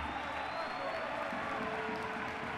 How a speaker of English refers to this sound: The crowd is excited about this competitor. They love a good smash fest, and Iron Brain Bruiser is just the sort of fighter to deliver just that.